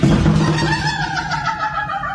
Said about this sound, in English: Door. What is making that noise? Because it hits the doorstop and it vibrates. It's an aggressive vibration. So the doorstop is shaking and that sounds like this.